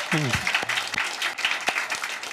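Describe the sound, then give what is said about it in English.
Dense, steady applause from a convocation audience after an announcement about next year's convocation, many hands clapping at once with a few sharper claps standing out, plus a brief voice-like sound at the start. “Well, I hear everybody clapping, but in my ear, I also hear people saying, but you're doing it online too, right?”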